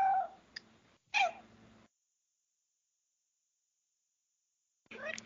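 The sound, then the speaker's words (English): A female cat meows loudly right beside the microphone, two drawn-out, wavering calls in quick succession, then a long silence before a third meow begins. No one speaks. “My cat has a lot to say on the subject, apparently.”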